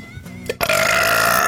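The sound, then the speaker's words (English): A loud, drawn-out burp bursts in after a brief lead-in, its rough, buzzy rasp holding steady for most of a second before trailing off. The gassiness came from eating a piece of Mr. Cackle's sponge candy. “Did you have a little, you know, little water and just make you a little gassy?”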